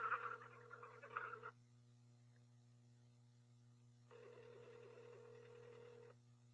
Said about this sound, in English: Hold on, it's ringing.